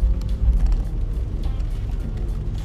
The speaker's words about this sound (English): I'm driving and podcasting, but I have a hands-free device, so I won't crash my car.